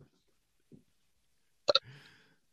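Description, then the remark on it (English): A single belch bursts out after near silence, opening with a sharp double pop and trailing into a brief, low, rumbling croak. “And now my belch is on Spotify for anyone who wants to play that back.”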